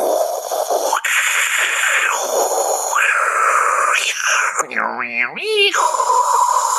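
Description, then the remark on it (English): A voice imitates a dial-up modem connecting to the internet, with steady high whines, hissing static bursts and warbling, swooping tones near the end, loud throughout. “it was dial-up internet. You remember the modem?”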